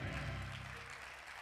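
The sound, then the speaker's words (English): An audience claps their hands together in a dense, steady wash of applause, with a low droning tone sounding underneath that fades slightly toward the end. “Come on, clap your hands.”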